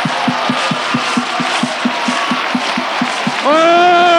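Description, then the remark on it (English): A church audience gives a rousing hand clap for Christ, clapping in a steady, driving rhythm, about four claps per second, over a dense crowd murmur; near the end a loud sustained harmonic tone swells in. “In the midst of them, Matthew 18:20-28, let's give him an incomparable Christ, a rousing hand clap.”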